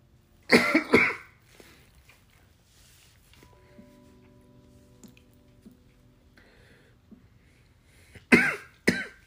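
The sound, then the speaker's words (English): A harsh coughing fit after smoking: a quick cluster of rough coughs, then several seconds of near quiet with a faint hum, then another burst of hacking coughs at the end. “Damn, smoke is cough.”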